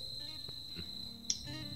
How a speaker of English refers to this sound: What is that noise? They're like crickets yeah, and stuff here, right?